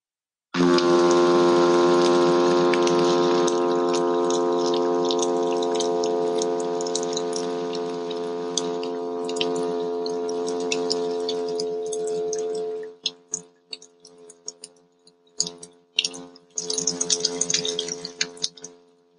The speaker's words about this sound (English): So here is the sound of the hum of the midshipman fish. And this is the one I'll mostly be talking about.